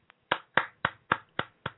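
A handful of sharp, evenly spaced hand claps, about six in a steady rhythm, fairly loud with no voices.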